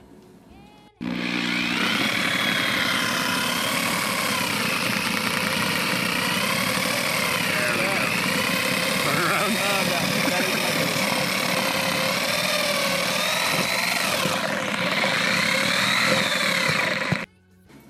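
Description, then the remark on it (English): A motorized chicken plucker starts abruptly and runs with a steady, loud mechanical whir and rattling drone for about sixteen seconds, then cuts off, as three chickens are power plucked on a homestead. “Right now, I'm about to power pluck 3 chickens.”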